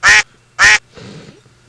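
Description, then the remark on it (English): A voice imitates a duck, letting out two loud, nasal quacks in quick succession, followed by a brief stretch of quieter murmuring noise. “Now, Donald, I can see. Right. Because, you know, a duck just, you know.”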